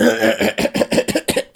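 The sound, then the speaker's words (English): A voice imitates a character breaking into a coughing fit: a rapid run of about seven harsh, loud, strained coughs tumbling one after another, with no talking. “And then he has to break out into coughs.”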